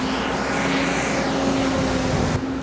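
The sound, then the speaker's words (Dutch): A truck's engine rumbles loudly and steadily as it comes along, a constant low drone with a humming tone, and no one speaks over it. “En er komt even een vrachtwagen aan.”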